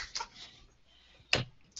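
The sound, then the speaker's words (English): A few sharp, irregular keyboard clicks, like someone typing on a computer: one soft tap early on, a louder clack near the end and another just after, with quiet gaps between. “he's typing.”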